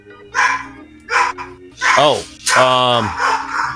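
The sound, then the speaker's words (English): A dog named Sharky barks four times in quick succession, each bark sharp and loud, the final one stretched into a longer, wavering yowl over a faint steady background hum. “Well, that dog was actually trying to say meow, so that's yeah.”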